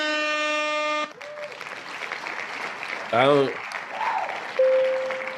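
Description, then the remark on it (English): A burst of crowd applause and cheering follows a blaring horn, with a wavering whoop and another horn blast cutting through the clapping near the end. “Can we give this man a round of applause, please?”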